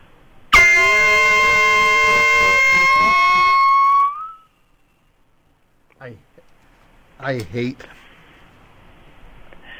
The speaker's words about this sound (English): I hate that air horn so much.